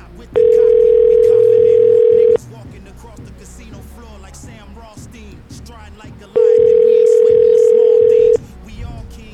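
A telephone ringing tone heard over a call line: two loud, steady buzzing rings, each about two seconds long, separated by a roughly four-second pause with faint background murmur.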